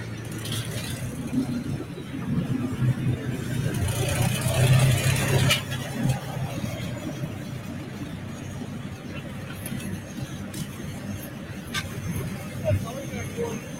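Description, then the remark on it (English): A heavy tractor engine roars steadily at a tractor pull held by the Hawkeye Vintage Farm Machinery Association in Dubuque, Iowa, on a Sunday afternoon, its low rumble swelling and revving for several seconds amid crowd noise and outdoor chatter. “A little tractor pulling on this beautiful Sunday afternoon.”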